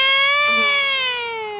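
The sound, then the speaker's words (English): A bee buzzes in one continuous, reedy drone for under two seconds. Its pitch sags slightly lower as it goes, and it fades a little toward the end. “That's a bee.”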